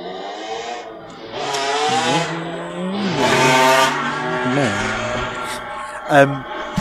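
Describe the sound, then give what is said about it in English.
A motorbike engine whines past, its pitch climbing and shifting as it grows louder toward the middle, then easing off as it moves away, with a brief sharper sound near the end. “Motorbike on my end for once.”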